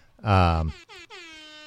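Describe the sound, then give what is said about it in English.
A loud, brassy horn blast sounds for about half a second, then gives way to a few shorter, thinner honks in quick succession, like an electronic air horn effect. “Yeah, that might be a synthetic air horn.”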